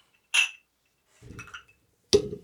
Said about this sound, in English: I remember the first time I clinked glasses.